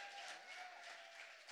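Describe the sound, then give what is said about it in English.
A steady wash of applause from an audience welcoming two guest pastors at a morning event, dense and continuous but fairly faint, with no voices standing out. “Can we give them a round of applause?”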